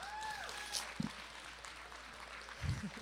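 An audience claps steadily to welcome a guest, a dense, even patter of many hands filling the whole clip, with a few louder thumps and a brief whistle-like tone near the start.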